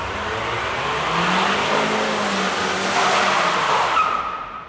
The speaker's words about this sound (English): And then I decided to have a little bit of a donut there, you know what I mean? Oh, and yes. Then all of the smoke from the tires blew into the restaurant.